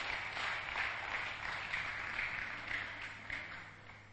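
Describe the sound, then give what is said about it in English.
A church audience claps steadily for several seconds as a clap offering to the Lord, a dense, continuous patter of many hands at moderate loudness with no voices standing out. “Come on, give a clap offering to the Lord.”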